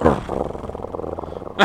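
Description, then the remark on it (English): A dog growls and snarls loudly while freaking out, a continuous rough rumble with a sharp, agitated burst at the start and another near the end. “Hey, you want to watch this dog freak out? Watch this.”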